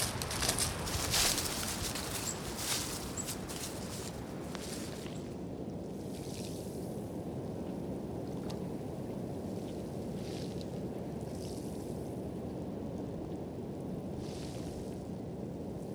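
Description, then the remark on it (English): A waterfall in a park in Canada's capital city roars steadily in October as water rushes over rock, a dense, constant wash of noise with a brighter hiss of mist and spray at the start, loud throughout with no voices. “The falls are the main focus of the park, with the hiss of mist and constant contact between water and rock being felt and heard across the entire space.”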